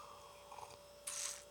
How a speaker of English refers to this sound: There's my fridge again. I haven't commented on that in a while. I really wish I was better at remembering to unplug that.